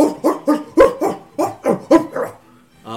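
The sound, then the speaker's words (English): A dog on a leash barks about eight times in quick, uneven bursts, fairly loud, then a brief high whine follows after a short pause. “There she is! There she is! And a dog on a leash.”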